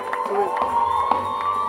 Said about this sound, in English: Come on, give a clap of praise to the Lord. Add a shout.